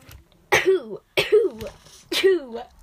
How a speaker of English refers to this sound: Sorry, guys. I sneeze a lot in the room. I think my record is 14 sneezes in a row, guys. 14. 15.